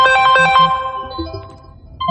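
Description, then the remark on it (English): A phone ringtone from an incoming spam call plays a bright, melodic sequence of electronic tones, quick pulsing notes at first and then a slower descending phrase, fairly loud with no voices over it. “And I just got a spam call.”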